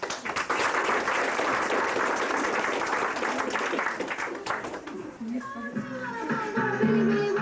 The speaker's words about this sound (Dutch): Dames en heren, doe hartelijk applaus voor de ….